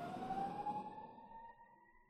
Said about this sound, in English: Got a siren going by.